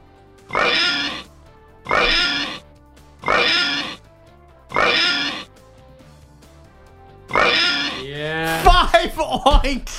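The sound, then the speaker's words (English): A pig oinks five times in loud, evenly spaced grunting bursts, with a longer pause before the last one, then a short burst of voice trails in at the end. “Five oinks.”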